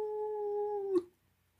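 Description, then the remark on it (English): Tyr, an old wolfhound, howls dismally once, a steady, mournful, drawn-out tone lasting about a second before cutting off abruptly, followed by silence. “As he did so, Tyr, the old wolfhound, lifted his head and howled dismally.”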